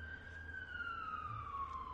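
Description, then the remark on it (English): An ambulance siren wails steadily, its pitch sliding slowly downward as it moves past, over a low rumble of traffic. “That's an ambulance.”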